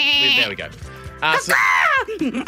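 A lamb bleats twice, a short quavering cry followed by a longer, louder one that wavers in pitch before trailing off.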